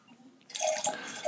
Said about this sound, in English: Oh God. Oh, that's a loud pour. A loud pour. Loud wine pour. You know, I always, like, contemplate muting the mic for the wine pour, but then I feel like it's awkward because then it's, like, really quiet.